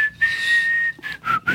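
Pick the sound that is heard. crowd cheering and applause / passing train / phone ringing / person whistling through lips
person whistling through lips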